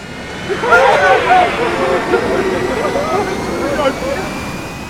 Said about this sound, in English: It's a miracle. The engines came back online. We're going to live.